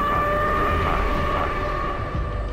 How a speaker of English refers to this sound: Just what can you do if fallout comes your way? The warning siren sounds. What should you do?